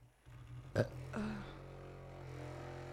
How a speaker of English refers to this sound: It sounds like they're doing construction. It does.